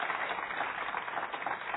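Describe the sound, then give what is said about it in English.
An audience at a morning church service cheers and claps for Jesus, a dense, steady wash of crowd noise that holds at an even, moderate loudness without a break. “So if you would, instead of us cheering for opening God's Word together, let's actually cheer for Jesus this morning, that He is alive.”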